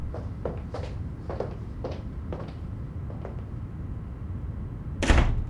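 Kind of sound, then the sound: household object, door being closed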